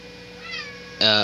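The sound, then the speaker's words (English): A cat meows loudly in one short, sharp cry, preceded by a fainter, drawn-out mewing sound. “hi, kitty.”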